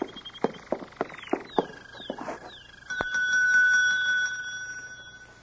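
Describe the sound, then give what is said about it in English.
A single sharp ding of a desk bell rings out and hangs in the air with a bright, sustained metallic tone, following a scatter of quick clicks and chirping sounds. “There's a bell over in the desk. It might be a help.”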